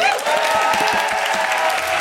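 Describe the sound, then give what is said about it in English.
A crowd applauds Amrit Kaur Lahia and two male performers who are about to play the show out. It is a dense wash of many hands clapping at once, with a few sharper claps poking through, sustained and fairly loud throughout. “Big round of applause for Amrit and the boys.”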